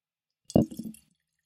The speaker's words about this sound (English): Okay, we're going to pour it into my mason jar.